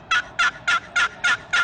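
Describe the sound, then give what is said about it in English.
A turkey pot call with a purpleheart wood lid played in a steady run of six evenly spaced yelps, each a bright, raspy note around the same loudness, clear with no talking. “So play that thing for us, Chris. This is the purple heart lid.”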